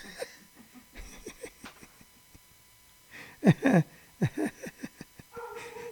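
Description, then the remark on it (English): A dog barks at a UPS delivery truck in a few short, sharp bursts, moderately loud, with quieter rustling and faint chuckling sounds around it. “But the dog's barking. The dog's barking, but it ain't for us.”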